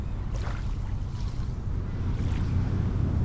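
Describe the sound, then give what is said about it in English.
A steady, low engine rumble drones on with rushing water and wind noise over it, with occasional brief hissy splashes of spray as a boat moves across the sea. “All of this increased commercial ship traffic on top of recreational boat activity is one of the biggest threats facing the whales that live here.”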